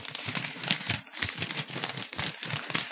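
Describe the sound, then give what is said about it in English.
Continuous crumpling of a piece of paper with irregular crinkly bursts and brief pauses, used as a sound effect to imitate the crackle of a fire in a cave. “Let me demonstrate with this piece of paper the fire.”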